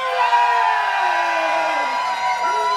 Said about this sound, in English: So in three, I would like to hear the biggest cheer that you think you can do, okay? Are we ready? Are we ready? Three, two, one, go!